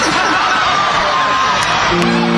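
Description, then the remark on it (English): A loud concert crowd yells out song requests over one another all at once, many voices blending into a dense, overlapping roar of yells and whoops, continuous for a couple of seconds. “Maybe you guys should start yelling out you want to hear now.”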